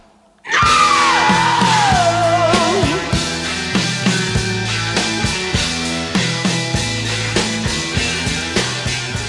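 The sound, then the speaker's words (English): A rock singer lets out a long, piercing scream that slowly slides downward in pitch, riding on top of a loud, full band with a steady pounding drumbeat. “I'd like to ask you guys, where do you rate that scream among the great screams of rock and roll?”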